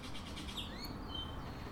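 Many sparrows chirp and tweet in quick, overlapping calls against a soft outdoor background hum, visiting the garden of a house in the morning.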